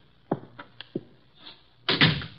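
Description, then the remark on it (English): A door being opened: a few low thumps and latch clicks, followed by a louder, rougher rush as the door swings, with no one speaking. “What do you know? The door's open.”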